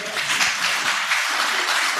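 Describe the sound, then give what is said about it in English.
A crowd gives a round of applause for someone who brought sweets for everyone, clapping steadily for a couple of seconds, a dense, even wash of many hands with no pauses and no voices standing out. “Round of applause, everyone.”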